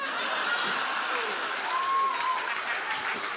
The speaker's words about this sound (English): We do a rainbow prism from red to purple? And you applaud for your favorite color.